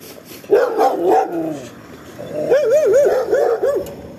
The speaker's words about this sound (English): Those dogs scared me.